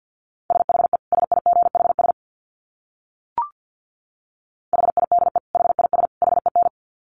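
Fast Morse code at 50 words per minute in a steady mid-pitched beep, sent as two rapid bursts of dits and dahs separated by a pause with a single short click between them. No voices.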